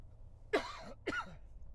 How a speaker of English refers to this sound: You have to, excuse me, I got a cough.